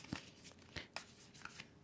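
Quiet papery rustling and soft flicks of a deck of cards being shuffled while a six-month-old puppy sniffs at it, a few crisp bursts scattered irregularly, with no voices.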